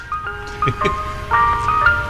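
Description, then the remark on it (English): A tinny, chiming Mr. Softy ice cream truck jingle plays a bright melody of steady electronic notes, continuous, over a faint low background rumble, in Blackwood, New Jersey. “I'm going to be on the ones and twos in the Mr. Softy truck.”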